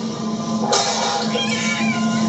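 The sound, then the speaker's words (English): A cat on a trash can that Dusty knocks over lets out a loud, drawn-out meow that starts abruptly and wavers for over a second, over a steady low background hum, with no talking. “And then Dusty knocks over the trash can with the cat on it.”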